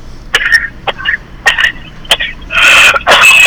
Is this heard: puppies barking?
no